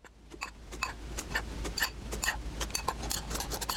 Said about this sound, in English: And let's spoon our flour mixture into the bottom.